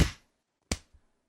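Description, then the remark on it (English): A group claps together in unison on the beat after a spoken count of 1, 2, 3: two sharp, bright claps about three-quarters of a second apart, the second followed by a faint, softer clap trailing off. No talking. “If you want, like, I'll do it once, and then I'll go 1, 2, 3, and then we'll all clap on what would be 4.”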